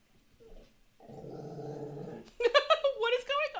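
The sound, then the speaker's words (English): A dog named Rufio, lying down, growls low and steadily for over a second, then breaks into louder, higher-pitched whining vocal sounds. “He's just laying there, growling Rufio.”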